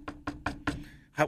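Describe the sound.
Four firm, evenly spaced knocks on a door, then a louder fifth after a short pause. Sharp, with a faint hum underneath and no talking.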